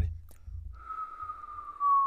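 A feeble attempted whistle: breathy air at first, then a thin, steady, slightly wavering tone that holds for over a second before cutting off, fairly quiet.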